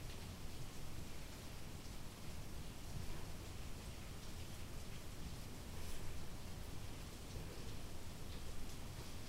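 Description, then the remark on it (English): Steady falling rain makes a continuous, even hiss with a soft low rumble underneath, holding at a constant moderate level throughout with no voices and no distinct individual drops standing out. “Right now we can hear the original person in the falling rain.”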